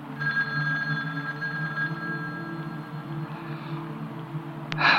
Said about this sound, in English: The phone in the living room? The one that had its cable sliced in half? It's ringing.